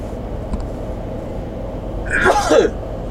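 A single human sneeze bursts out near the end, fairly loud, with a sharp breathy rush following a quiet intake, over a low steady background hum.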